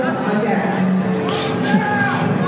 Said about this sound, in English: These are an arm wrestling competition.